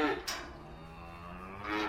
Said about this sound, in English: These contented cows live at Windhurst Farm, which is part of the University of Bristol Veterinary School, and we're a few miles southwest of the city. I'm in the calf shed, which, as its name suggests, has stalls on either side of a central area